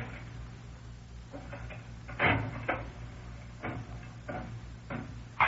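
A mechanical slot machine in a back room clanks as its lever is pulled, followed by a series of clacking, ratcheting thumps as the reels spin and stop, over a low steady hum with no talking.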